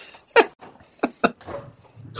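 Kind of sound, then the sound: animal, dog growling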